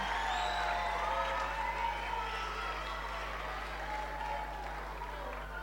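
An audience claps steadily and shouts together for children's memory verse recitals in a program, a dense wash of applause with scattered cheers and whoops rising over it, holding at an even loudness throughout.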